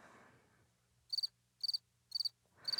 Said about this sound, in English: Give me some crickets.